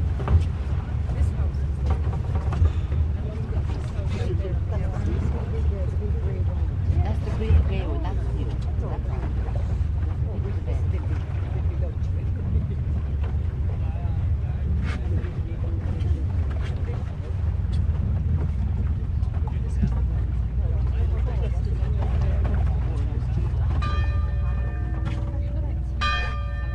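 A boat carrying pilgrims from the mainland to the island of St. Patrick's Purgatory crosses open water: a steady, heavy engine rumble with wind buffeting the microphone throughout, and a ringing bell-like tone near the end.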